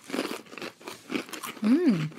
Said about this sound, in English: I tasted more, …, as you're chewing it